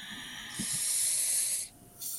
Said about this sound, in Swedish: Så ta kanske ett djupt inandetag och bara